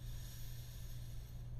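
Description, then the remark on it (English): A long, steady inhaling breath, a soft continuous airy hiss held evenly for over a second with no talking, set against a low background hum, taken during a guided breathing exercise, breathing into the shoulders. “Into the shoulders, breathing in.”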